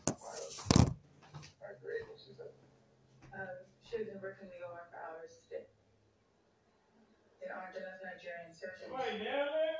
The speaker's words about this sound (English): Give me a second. It sounds like somebody's trying to kick the fucking door in.